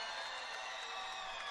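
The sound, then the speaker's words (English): A crowd at the Marriott Center in Provo, Utah, cheering and clapping for two seniors being honored after the BYU Cougars' 64-54 win over Houston, in a steady, unbroken roar, a dense wash of noise holding the same loudness throughout, with no single voice standing out. “And the crowd still hanging around, cheering on both of the seniors as they certainly deserve.”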